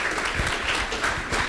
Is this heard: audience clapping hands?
yes